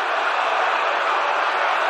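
A dense, steady roar of a baseball stadium crowd cheering a game-winning home run by Chris Morrell, loud and unbroken with no distinct voices standing out.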